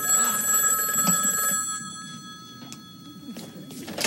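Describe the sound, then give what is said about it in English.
A telephone rings with a steady electronic tone, loud for about a second and a half before dropping to a quieter continuing ring over low background rumble. “Al takes a phone message, which is probably the greatest phone message on Earth.”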